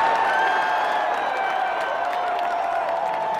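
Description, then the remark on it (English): A crowd cheering and clapping sound effect, played in response to a comment by Mike Pereira, a steady wash running throughout at an even, fairly loud level, with no voices speaking over it. “That was actually me cheering on the comment made by Mike Pereira about me being right.”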